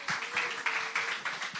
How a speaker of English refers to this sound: Shall we give her a round of applause?